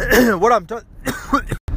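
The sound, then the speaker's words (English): A person coughs and clears their throat in a violent fit of several harsh bursts, one after another, with a brief silence before a final short hack. “Had a violent coughing rage there.”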